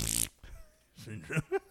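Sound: fart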